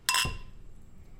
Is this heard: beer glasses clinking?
yes